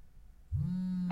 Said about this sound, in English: Oh, darn. There's that timer. And Lord knows we don't go past that 1 minute.